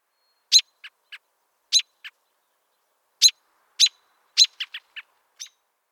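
A bird gives short, sharp cheep and chuck calls, single notes and little clusters scattered irregularly across several seconds, clear against silence, with no voices.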